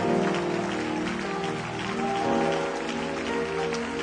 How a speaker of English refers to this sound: Just clap your hands one more time to Him tonight. Shout.